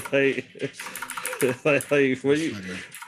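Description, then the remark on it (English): Fast clattering keystrokes on a computer keyboard run through the background while a man talks loudly over them, the typing steady and quick beneath his voice. “Yo, who is the keyboard warrior right now?”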